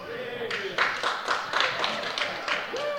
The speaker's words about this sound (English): Home of the Tigers, right? And for those of you cheering in the back, let me tell you what, no matter how big of a fan you are, you're not walking to Auburn.